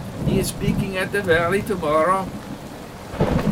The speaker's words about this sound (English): "That's the answer," smiled McGee as the rain drizzled on his sunlit face.